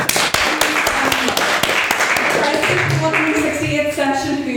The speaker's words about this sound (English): So if we could give a round of applause to Mr. Ben Murphy.